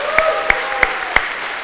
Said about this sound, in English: will you let them know that by just a round of applause and an amen?